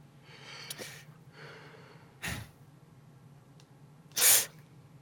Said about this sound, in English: Were you taking your coke? Were you kicking your cocaine sniff right there? Because that's what it sounded like.